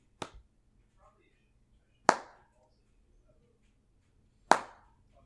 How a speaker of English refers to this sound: There's a …, and … walks out on stage, and he stands in front of the audience, and he starts clapping his hands like this.